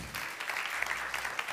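A crowd applauds steadily to welcome a trumpet player, a dense, continuous patter of many hands clapping at an even, fairly loud level with a few sharper claps poking through.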